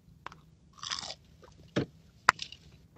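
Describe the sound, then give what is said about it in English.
Chewing a piece of a chicken sandwich that came apart: moist, crunchy bites and smacking mouth sounds in irregular bursts, with two sharp crisp crunches standing out over a quiet background. No talking. “All right, I got a piece of chicken sandwich here. It came apart.”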